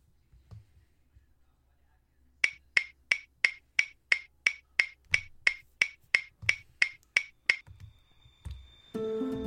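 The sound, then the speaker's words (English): A clock ticks in a steady, quick rhythm, about sixteen crisp, bright clicks in a row, over faint low rumble, before a louder, humming sound takes over at the end. “The sound of the clock.”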